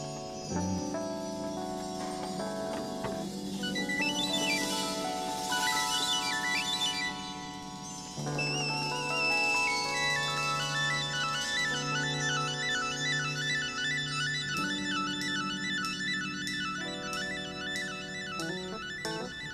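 A recorded love song plays steadily and fairly loud, with lush sustained chords, a wavering melodic line, and a light, regular percussive tick joining in toward the end, with no talking over it.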